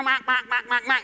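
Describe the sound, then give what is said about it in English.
A voice imitates the car horn of a driver behind at a stoplight in Atlanta, with five quick, nasal honks in a steady rhythm, each short blast loud and buzzy, with brief gaps between them. “make out until the person behind you honks the horn”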